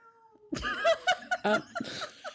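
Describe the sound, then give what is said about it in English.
A cat yowls near the microphones in a string of loud, wavering meows and chirps, several quick calls over about two seconds, with a faint steady hum underneath. “So apparently we should just step away from the mics and let the cats take over this one.”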